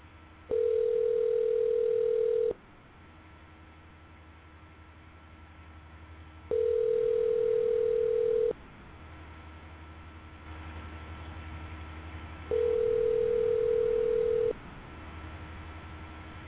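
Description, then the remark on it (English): As a person calls a friend, three long, steady telephone line tones, each about two seconds, repeat at even intervals with quiet gaps between, over a low background hum; no one speaks. “So we're going to make some calls here. I'm going to call a couple of my friends.”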